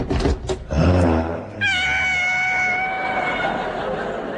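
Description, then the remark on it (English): A loud, wavering yowl of a savage tiger being washed in a bath, with a strong rising-and-falling wail, followed by shrill sustained whistling tones over a steady hiss that slowly fades. “He's washing a savage tiger.”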